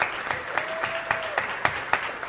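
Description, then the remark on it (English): An audience claps steadily in a dense, sustained wash of applause, with a few sharper, louder claps standing out at irregular moments and a faint thin tone humming briefly underneath, applauding a man thanked for his weekly volunteer service. “he deserves a big round of applause”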